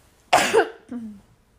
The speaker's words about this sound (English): Girl, I'll be coughing over here.